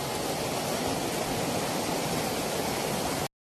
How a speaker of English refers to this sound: Yeah, and so it looks about like this, where when that rain comes, you literally have dry ground that is going to turn into a rushing river in just a period of seconds.